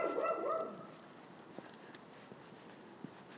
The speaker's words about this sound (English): I'm glad I haven't got a dog like that. I know it's natural and all that for dogs to bark. It's not the end of the world if they do bark, because they can hardly talk.